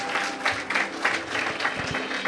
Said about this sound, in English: You know, they've done such a fantastic job, haven't they? Can we give them a round of applause again?